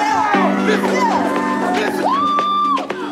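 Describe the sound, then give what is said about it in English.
A large protest crowd yells and cheers together at night, overlapping shouts and whoops rising in a loud, sustained roar with sharp individual voices cutting through. “I want you tonight, yell as loud as you want to yell.”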